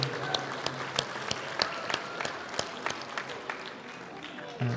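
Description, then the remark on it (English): A crowd of sports club teams and parents at an evening gathering applauds itself for its dedication this year, a dense patter of many hands clapping steadily for several seconds with sharp individual claps standing out, at a fairly even loudness throughout. “Give yourselves a big round of applause, guys, for all your dedication this year.”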